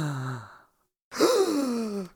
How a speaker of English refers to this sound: I hear you gasp. Flaming hell.